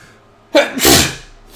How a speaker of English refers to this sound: Hold on, I feel like I'm going to sneeze.